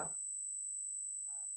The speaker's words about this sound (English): now you still hear the buzz? No, it's gone, whatever you did. It's gone.